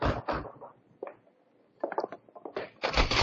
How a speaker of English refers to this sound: A little more pounding on that door might have caved it in.